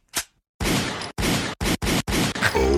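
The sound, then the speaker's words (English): A gunshot sound effect: a sharp crack, a short pause, then a string of loud, harsh blasts in quick succession, noisy, ending with a brief tonal cry mixed in. “Okay, can we cue the gunshot sound, please?”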